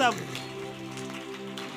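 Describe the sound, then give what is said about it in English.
A church audience claps as an offering to God in a dense, steady patter of applause, while a sustained keyboard chord hums underneath and a voice can be heard in the mix. “Give God some clap offering now.”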